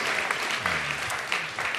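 A steady round of applause from a group, many hands clapping in a dense, continuous patter at moderate loudness, with a faint low voice murmuring underneath.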